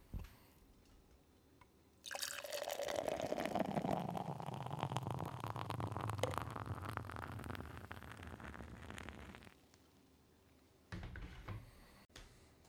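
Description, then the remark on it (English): Brouwerij West's Blackberry Ale, 'Dog Ate My Homework', a 7.0% ABV ale brewed with malted barley, hops, black currants and blackberries, pours steadily into a glass for about seven seconds, a continuous gushing splash whose tone shifts as the glass fills, followed by a brief soft clunk afterward. “Let's get with the pour.”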